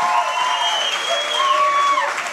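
A steady round of applause from a crowd, dense and continuous clapping at an even loudness throughout, with a few faint whistles or cheers riding on top.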